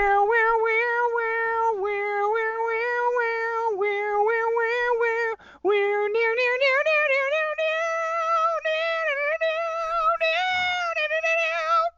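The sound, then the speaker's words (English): A person hums a guitar solo as a wavering, high-pitched melody with sliding notes, loud, pausing briefly midway before continuing; the nasal, drawn-out tone sounds much like a cat meowing. “Can you just hum the solo?”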